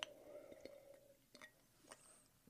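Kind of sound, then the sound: food or drink, sipping coffee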